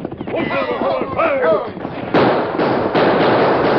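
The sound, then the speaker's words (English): A raised voice shouts briefly, then a dense, harsh crackle of gunfire from men shooting as they back off a boat takes over, with several loud bursts overlapping into a continuous barrage that stays strong to the end. “Keep shooting hard so as we drop anyone that shows himself.”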